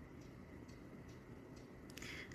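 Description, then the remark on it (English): A German-made cuckoo clock hanging in a living room ticks softly and steadily, about two ticks per second, heard faintly over a low, constant background hum with no one speaking. “The tick-tock and song that plays on the top of an hour.”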